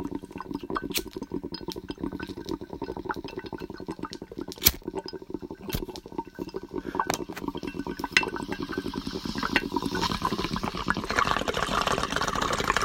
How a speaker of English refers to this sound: Ooh. Like you're caught in a thunderstorm. Caught in a thunderstorm.